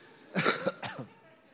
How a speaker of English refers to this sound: You can probably hear it in my voice. I'm going to be coughing and sniffing the whole night.